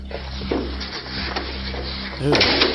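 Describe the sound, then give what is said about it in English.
A wooden door is pushed shut, with a few knocks and scraping rubs leading up to a louder closing thud near the end, over a steady low hum and faint voices. “Yeah, shut that door. ¡Puta madre! That's gonna keep him out.”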